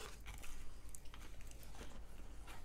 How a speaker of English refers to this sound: Good ASMR here for everybody. I can't will say, chewing into a microphone is honestly an amazing sound. Oh, yeah. It sounds great.